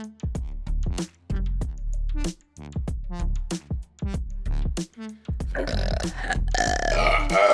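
A long run of loud burps, several in quick succession with short gaps, ending in a rougher, noisier stretch as the belching overlaps and turns raspy.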